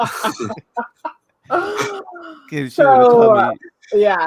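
A dog, Pablo, barks in a series of short, irregular bursts, some drawn out into whiny yelps, fairly loud.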